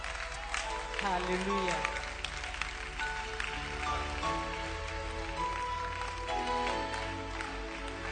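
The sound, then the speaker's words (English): A church audience claps steadily and densely for the Lord and Jesus throughout, many hands blending into a continuous patter, while a voice speaks or sings over the clapping. “Are you clapping hands for the Lord?”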